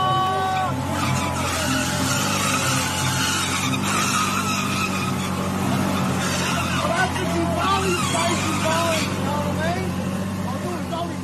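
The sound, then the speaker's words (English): An Australian man revs a scooter hard through a sustained burnout outside a nightclub in Bali, holding up traffic; its tire screeches and skids continuously and loudly, with crowd voices and traffic noise mixed in around it. “That's an Australian man doing burnouts on a scooter, holding up traffic outside a nightclub in Bali from earlier this year.”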